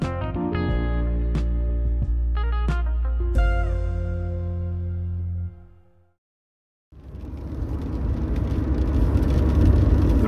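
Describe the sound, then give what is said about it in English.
Sustained musical tones fade into a brief silence. Then a car driving cross country from Westbury, Wiltshire, towards Bristol on a very rainy day takes over: a steady, loud low rumble under a bright, constant hiss of wet tyres, with no voices. “I'm on my way to Bristol, driving cross country from Westbury, where I live in Wiltshire.”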